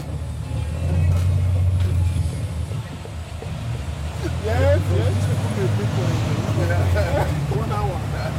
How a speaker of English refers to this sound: There's space on the bus for me and Karen, so we hop along for the ride.